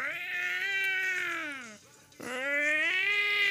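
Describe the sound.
A voice imitates a cat with two long, drawn-out yowling meows, loud, separated by a brief pause, each call sustained and slightly rising in pitch.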